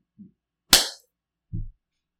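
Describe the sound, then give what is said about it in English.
One sharp, bright hand clap cracks out alone, with a soft low thump shortly before it and a duller, heavier thud about a second after. “Just clap and like give me another thought on that.”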